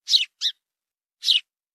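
A sparrow chirps three times in bright, high bursts, two quick notes followed by a third after a short pause, clear with no other sounds around it.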